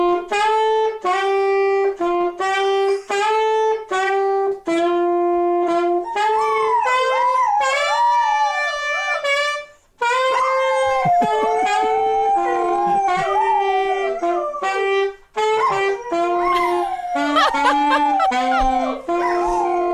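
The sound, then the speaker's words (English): A dog howls loudly and continuously, long wavering tonal cries rising and falling in pitch, with occasional yips and whimpers mixed in, sustained throughout. “I agree with that dog.”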